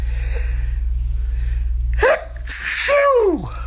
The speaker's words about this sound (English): I think I'm going to sneeze.